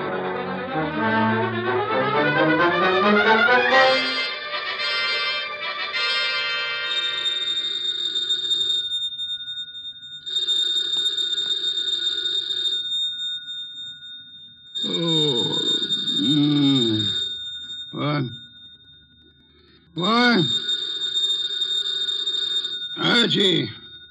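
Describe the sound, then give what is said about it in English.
An old-fashioned telephone bell rings loudly in several bursts, with low groaning vocal sounds at the start and between some of the rings. “The phone.”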